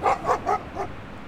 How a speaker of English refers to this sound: Look at how big it is. What a big dummy. He's just barking at everybody that walks by. Control your animal, Jesus.